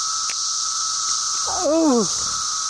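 A steady, high-pitched cicada drone holds unbroken for the whole stretch, loud and even. Midway, a person briefly lets out a falling vocal exclamation over the buzz.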